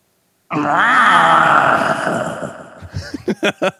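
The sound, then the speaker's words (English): A person imitates a panther roar with a loud, raspy growl held for about two seconds, then it breaks into a quick series of short, choppy huffs. “Okay, lastly, can you give us a panther roar?”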